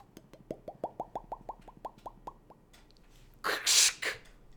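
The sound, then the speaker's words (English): A voice imitates beer pouring into a glass: a quick run of about a dozen hollow mouth plops climbing in pitch, followed by a short, loud breathy hiss like foam. “I don't know if we can make the fake pouring into a glass sound.”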